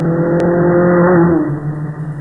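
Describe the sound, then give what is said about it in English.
An airplane passes by, its loud, steady engine drone sliding down in pitch about midway through as it goes past, with a brief click near the start and no voices. “As the airplane passes you, you will hear the familiar Doppler shift.”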